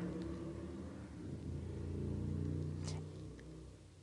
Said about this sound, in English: And as, you know, if you guys heard the motorcycle going by, yes, it is warming up in Wyoming. And when that warms up, everybody gets out their motorcycles.